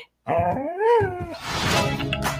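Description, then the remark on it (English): A cartoon dog lets out a long, wavering whimper that rises and falls, then breaks into rough, noisy, loud barking, with no one talking. “This is the weirdest animated dog I've ever seen.”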